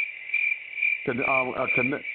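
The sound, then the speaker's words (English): Crickets chirp in a steady, continuous high trill for the whole clip, played as a sound effect introducing a segment called Crickets of the Week. About halfway through, a lower voice-like sound joins beneath the chirping. “Gonna go into Crickets of the Week, and I want to jump into something.”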